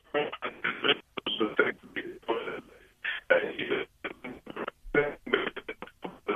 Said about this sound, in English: we're losing you there again. I think your phone line is about to go. I know you had only a few percent left on your phone in terms of power, but we'll leave it there.